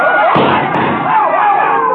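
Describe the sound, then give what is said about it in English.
A single sharp gunshot cracks out early, cutting through a loud, dense crowd murmur that keeps churning around it for the rest of the moment. “This time, there was no poetry. Just a gun.”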